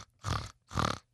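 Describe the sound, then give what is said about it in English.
A person imitates a pig with two short, nasal oink-snort bursts in quick succession, with brief silence between them. “Okay, guys, give me the warning pig real quick.”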